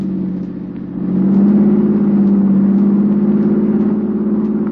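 A car engine hums steadily, then revs up and holds a stronger, higher drone as the car drives on along a road leading to a bridge over a freeway. Nobody speaks.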